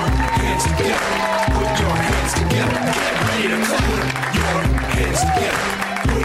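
An audience claps steadily and loudly over driving music with a thumping bass line, the clapping filling the whole stretch as a dense, continuous crowd noise.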